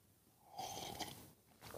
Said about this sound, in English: So today I'd like to introduce, thanks to a follower recommendation, the simultaneous slurp. Everybody, one more time, except go big.